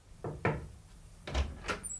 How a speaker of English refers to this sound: However, we were interrupted in our deliberations when one of the servants knocked at the door.